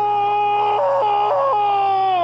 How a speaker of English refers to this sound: So if you really want to hear the Harvey Keitel wail, which I think maybe is up there with the Wilhelm scream, then maybe here's your place to enjoy it.